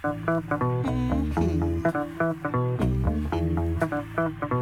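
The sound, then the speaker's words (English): A funky electric bass guitar plays a syncopated riff alone, its punchy low notes bouncing in a steady, looping groove with short gaps between phrases, loud. “I'm going to need half a teacup of bass.”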